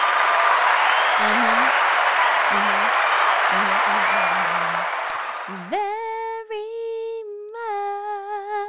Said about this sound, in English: I feel like that should be a hand clap of praise.